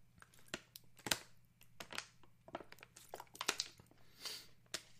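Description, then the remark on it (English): Someone takes a swig from a plastic water bottle: a faint, irregular run of sharp crinkles and crackles from the bottle being squeezed and handled, with no talking. “All right, let me take a swig of my water.”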